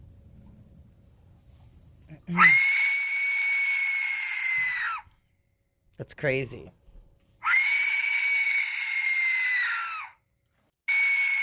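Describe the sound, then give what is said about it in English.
An Aztec death whistle lets out three loud, harsh, scream-like shrieks, each held for a couple of seconds with a rough breathy edge, and a man briefly speaks between blasts. “What was the other one besides the Aztec death whistle?”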